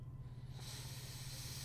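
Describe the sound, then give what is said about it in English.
Beer from Maine Beer Company pours into a glass with a soft, steady fizzing hiss that starts partway through and keeps going, over a low constant hum. The sound is quiet overall, and no one speaks. “So, pour it into the glass.”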